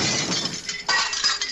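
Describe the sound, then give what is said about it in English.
Glass shatters in a loud, crunching burst as an already partly broken object is smashed the rest of the way, followed by a second wave of bright tinkling and clattering shards that fills the brief moment without any voices. “I didn't want it to fall on anybody coming in here, so I just finished breaking it.”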